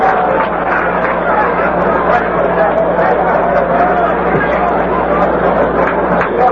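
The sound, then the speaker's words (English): Steady murmur of an overflow crowd at a professional baseball game at Jerry Park in Montreal, many overlapping voices blending into a constant, even hubbub with no single speaker standing out, holding at the same loudness throughout. “We've got an overflow crowd here at Jerry Park.”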